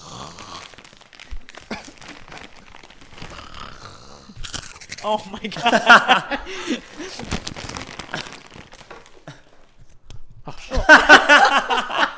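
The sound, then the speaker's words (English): Loud, close crunching of Cheetos cheese puffs and crinkling of a snack bag come in two bursts, one midway and one at the end, with people talking and exclaiming in between. “And the crunching is gonna be like right in my ear.”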